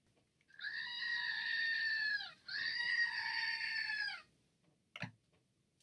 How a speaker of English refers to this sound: I mean, that scream comes from deep in the bowels of Halloween past.